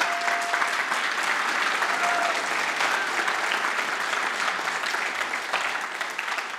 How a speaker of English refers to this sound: Usually they applaud when I get through.